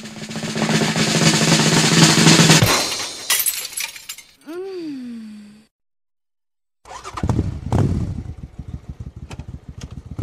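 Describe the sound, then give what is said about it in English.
A motorcycle being ridden down a road drones steadily, then tires screech in a wavering whine, a brief silence follows, and a loud crash of smashing and breaking debris clatters on for several seconds. “Okay, you're riding down the road on your motorcycle, and you like to do it without a helmet, but now you're being told you have to wear a helmet.”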